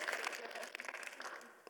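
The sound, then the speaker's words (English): A brief burst of audience applause following a prayer, a dense patter of many hands clapping that holds steady for over a second before thinning out, with a few murmured voices mixed in. “Yeah, we can clap.”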